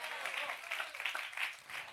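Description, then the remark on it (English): Light, scattered applause from a church audience, with about half of them clapping, a steady patter of hand claps that swells and fades slightly over two seconds without anyone speaking. “I feel like 50% hand clap.”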